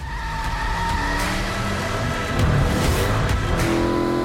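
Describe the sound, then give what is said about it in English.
A muscle car burning rubber in a car ad: tires screech steadily over a roaring engine, loud, for about four seconds with no voices. “this activity that these guys are doing around literally burning rubber”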